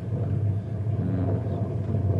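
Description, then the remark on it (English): A deep, rolling rumble from a distant dynamite explosion, low and steady throughout without a sharp onset, filling the background with heavy bass and no voices. “Hey, that wasn't thunder. It was dynamite.”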